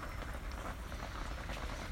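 Rain pattering on a roof, heard as a soft, steady hiss with a low rumble underneath, constant and even throughout with no voices.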